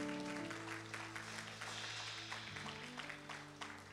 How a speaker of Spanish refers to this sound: Ay, ay, ay, denle un aplauso al Señor si puede en esta hora.